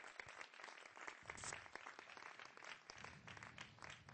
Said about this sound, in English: Come on, let's give God a clap.